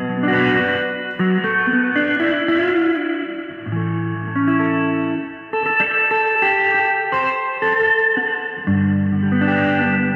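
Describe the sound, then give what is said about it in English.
An electric guitar in its bass mode, with the rhythm circuit switched on, plays through an overdriven amp: gritty, sustained notes and chords that smear together in a heavy wash of reverb, loud and continuous, with no talking. “Overdriving the amp, and it kind of gets this trashy sound, but man, it's just such a wash of reverb coming from that.”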